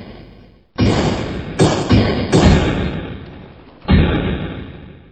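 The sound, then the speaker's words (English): Heavy pounding blows from the timber fists of treemen strike a wooden main gate of a courtyard, about five deep booming thuds landing in an irregular rhythm, each loud and resonant with a long rumbling decay between hits. “Oh, well, back in the main courtyard, the main gate itself was on its last legs as the timber-fisted punches of Clinty and the other treemen rained against it like the punishing waves of a sea storm upon chalky cliffs.”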